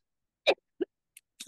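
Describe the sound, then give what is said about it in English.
A few short coughs from an allergy attack: a strong first burst, then a sharp smaller one and two fainter, breathy ones, spaced unevenly with no talking. “Well, I am coughing here.”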